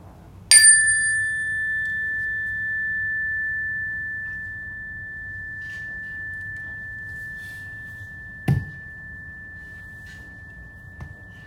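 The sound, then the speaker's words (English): A bell is struck once for a listening exercise, and its clear, steady tone rings on for several seconds, slowly fading, with a faint knock partway through. “Only raise your hand when you don't hear the bell anymore.”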